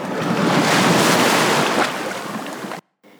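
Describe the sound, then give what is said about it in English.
Loud, steady rush of wind and splashing water, like waves lapping at a dock, heard from a boat moored at a dock late in the evening, cutting off abruptly near the end before a quieter breeze returns. “And we're back. At the dock.”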